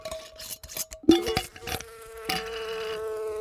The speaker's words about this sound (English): First thoughts. Well, I can hear buzzing, which right off the bat makes me think bee.